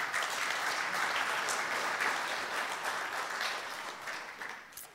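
A crowd claps steadily and densely for several seconds, a warm wash of audience applause that holds fairly loud before tapering slightly at the end.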